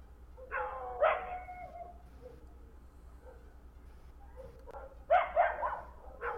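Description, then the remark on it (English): A dog barks in two short bursts a few seconds apart, each a quick cluster of sharp barks, over a steady low background hum with no talking. “What bad dog.”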